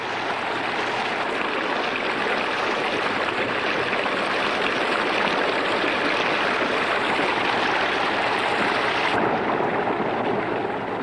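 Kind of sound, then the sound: nature, flowing river water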